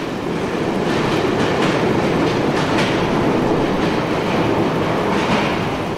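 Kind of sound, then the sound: vehicle, train passing by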